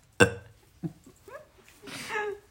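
A short, loud burp erupts, followed by a few softer throaty noises and a longer breathy vocal sound, as if someone is reacting or laughing.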